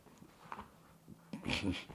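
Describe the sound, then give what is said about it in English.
A puppy whimpers in a few short, high, whiny bursts, growing louder and more insistent toward the end, with faint breathy sounds between them. “he's just a puppy, folks. He has to keep moving.”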